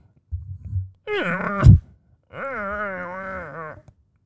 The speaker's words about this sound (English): Now, instead of asking for food, he starts grunting and growling.